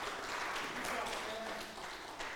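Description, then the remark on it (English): A steady burst of clapping from a group for a boy who answered a question about what an emotion is, dense and crackling, holding at an even level for a couple of seconds with murmuring voices mixed in. “Let's give him a round of applause for being so smart.”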